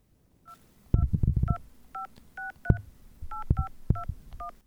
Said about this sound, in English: Wait, are you dialing the number? You don't have it saved?